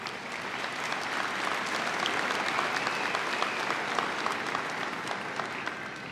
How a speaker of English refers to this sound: So blow them a kiss or give them a round of applause if they're here, or send them a mental hug if they're not here today.